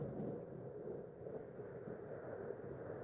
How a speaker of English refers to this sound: And then we have a cloud with a lightning bolt. So this is thunderstorm.